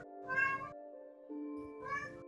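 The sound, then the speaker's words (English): A cat meows twice, fairly loud, with a short pause between the cries, over a low, steady humming drone that continues throughout. “Sorry, the cat got to me.”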